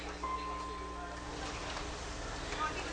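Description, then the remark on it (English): A field recording of light rain falling in a steady, even hiss of fine patter across the whole clip, with no voices; a faint thin tone drifts in briefly near the start. “Back to just a field recording. Just a light rain.”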